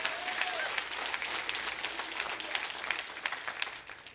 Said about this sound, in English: Let's just give the Lord a clap offering over that. Come on, somebody.